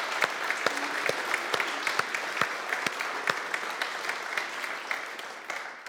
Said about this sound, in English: Our youth, compassion ministries, car park, AV, cafe, our leaders, our staff, our trustees, everyone, we want to say a huge thanks. Give a round of applause to every single one of you.